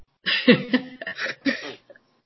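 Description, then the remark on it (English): A short run of three or four harsh coughs in quick succession, fairly loud, with no talking around them. “Don't forget to cough backwards.”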